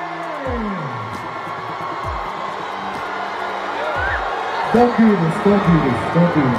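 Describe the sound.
A large crowd at a Somali music event in Minneapolis boos Ilhan Omar: many overlapping voices hold low, sliding 'boo' tones in a steady, dense roar that swells louder toward the end.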